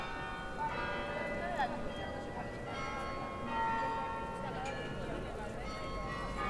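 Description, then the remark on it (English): Church bells of the many Catholic churches in the city center of Leuven ring with overlapping, sustained tones that hum and shimmer continuously, set against a busy outdoor bustle of crowd murmur and street noise. “Strolling around the streets of Leuven, I felt how strongly immersed I became in its vibrant soundscape, in which one of the most dominant and recognizable elements was the sound of the church bells.”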